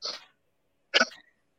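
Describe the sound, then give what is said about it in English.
Two short, harsh coughs caused by allergies, moderately loud, separated by a pause of about half a second, with no talking around them. “I'm sorry for coughing.”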